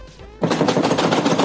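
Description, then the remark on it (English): After a brief quiet moment, a loud, rapid barrage of heavy bangs erupts as a desk is slammed over and over in a fast, steady drumming rhythm. “I imagined you were slamming a desk and then broke a glass and then just leaned into it.”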